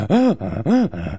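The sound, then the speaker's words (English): A voice imitates desperate gasping for air while running up a hill: two loud, rhythmic cycles, each a strained, voiced groan-like exhale followed by a hoarse, breathy intake, with no other talk. “On the run, I saw a big difference running up hills. And not in pace-wise, but me not gasping for air anymore.”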